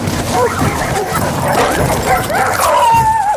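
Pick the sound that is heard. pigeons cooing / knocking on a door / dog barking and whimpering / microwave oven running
dog barking and whimpering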